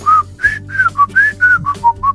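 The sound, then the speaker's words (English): Someone whistles The Andy Griffith Show theme tune, a bright, bouncy run of about nine short melodic notes, clear and fairly loud over a faint low hum, with no talking. “And as we go to break, maybe we'll do our best Andy Griffith Show whistle.”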